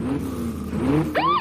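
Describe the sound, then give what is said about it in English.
A car engine drones steadily, then its pitch climbs and sweeps sharply upward near the end as it revs. No one speaks. “Hold on with the engines. Keep this as real as we can. With the car in the background.”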